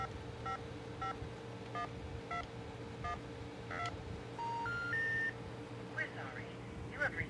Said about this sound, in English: So the first cool thing that you'll notice is I finally have the touch tones happening when I play.